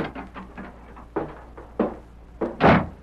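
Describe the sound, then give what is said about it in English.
The door of a stage office opens as a man strides inside, with a few soft knocks and shuffles, then closes with a solid, fairly loud thump; no one speaks. “Red Murphy looked up in surprise at the sound of the door.”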